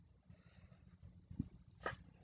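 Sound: dog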